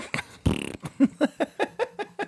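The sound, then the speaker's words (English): Someone blows a wet, buzzy raspberry imitating a fart, one sustained blast followed by a quick run of about eight short sputtering puffs, fairly loud with no talking. “I did. Fart.”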